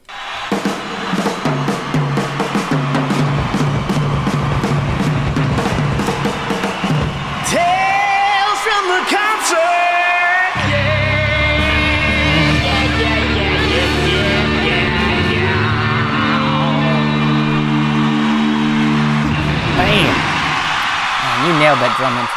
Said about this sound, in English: wanted to make a theme song of my own for one of, I guess it's a bit that I came up with called Tales from the Concert. Yes. And this was a fun afternoon. A lot of screaming, a lot of loud guitar playing in the basement. Here's that intro.